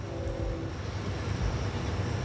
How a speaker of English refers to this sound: Got a train coming.